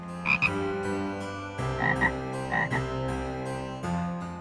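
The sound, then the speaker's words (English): A frog croaks several times in a row, deep, buzzy, resonant calls with short double-pulsed bursts, moderately loud, with no voices present. “this week I give you spang you, which is to cause a frog or toad to fly into the air.”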